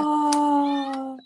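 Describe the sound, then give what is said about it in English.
A single long, drawn-out meow from a cat named Jon Snow, fairly loud, its pitch sagging slowly before cutting off into a brief rustle at the end. “I'm not sure if I can hear Kat in the background. Well, I keep thinking, oh, God, shall I let him in? Is that your cat?”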